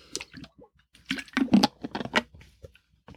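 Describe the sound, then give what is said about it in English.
A series of wet slurping sips and swallows of matcha tea, several short bursts over a few seconds, fairly quiet with no talking. “And I will take a sip of this matcha tea first.”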